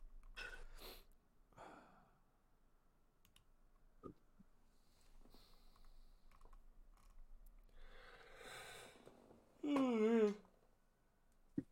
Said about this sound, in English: I'm yawning, but I've still got the editing to do.